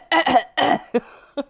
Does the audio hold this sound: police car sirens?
no